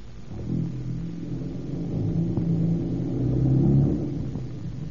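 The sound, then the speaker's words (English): A car engine rumbles low and revs as the car drives against a stalled car's bumper to push it, its droning pitch shifting and the sound swelling louder toward the end before easing off, with no voices. “drive against his bumper. Give us a shove.”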